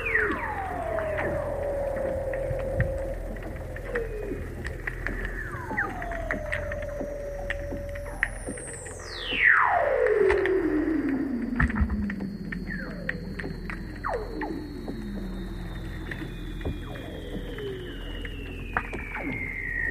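Weddell seal calls recorded by a hydrophone dropped down a hole in the sea ice at the Sea Ice Microbe Camp: eerie descending whistles sweep downward one after another, with a long gliding trill and a steady high tone stretching across, over a bed of clicks and crackling pulses underwater.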